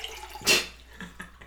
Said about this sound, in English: I love the sound effects. It's perfect timing. I was pouring water on myself.